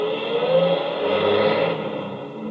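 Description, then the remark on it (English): A truck engine revs loudly and steadily as the vehicle pulls away, its rumbling drone holding for a couple of seconds before easing slightly at the end. No one speaks. “Get your truck out of here at once!”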